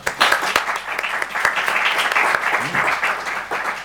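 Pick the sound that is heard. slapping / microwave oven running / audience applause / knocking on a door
audience applause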